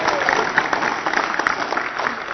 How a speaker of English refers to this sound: Let's applaud for her.